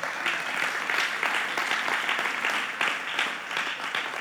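A room full of people claps steadily in applause for the leadership and everyone who serves, a dense wash of overlapping handclaps that holds at an even loudness throughout, with no voices standing out above it.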